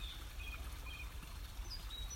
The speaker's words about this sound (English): It's a beautiful morning and I hope you can hear the bird song. I've chosen a spot that's quiet. There aren't many people around, but there's a little stream. I don't know if you can hear it.